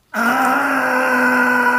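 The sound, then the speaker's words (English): A voice lets out a long, steady, high-pitched scream, imitating a latke (potato pancake) shrieking as it is slapped into a pan of very hot olive oil; it starts abruptly and holds loud and unwavering for nearly two seconds with no other talk. “This is when it began to scream.”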